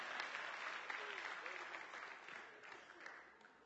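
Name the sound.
audience applauding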